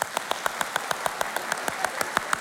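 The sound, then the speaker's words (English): An audience claps in quick, steady unison as a drum roll for unveiling the church's redesigned Hope logo, about six or seven sharp claps per second, over a soft wash of scattered crowd noise. The rhythm stays even and nobody speaks. “You can do, let's take it to a clap, make it a little louder.”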